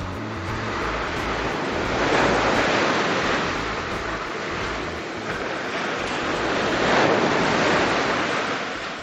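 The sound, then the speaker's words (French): Mediterranean Sea waves break steadily on a shore at El Hoceima in northern Morocco, a broad rushing wash that swells and recedes in two slow surges, with wind adding a low rumble. No voices. “La mer et le ciel m'ont emporté vers un univers enchanteur où la couleur bleue et la musique des vagues régnaient.”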